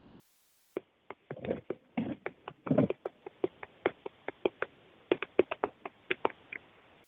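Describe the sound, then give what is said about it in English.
Someone on a group call pounds on a computer keyboard, a fast, irregular run of sharp clacking keystrokes, some bunched into quick flurries, with no one talking. “Who's beating on the keyboard?”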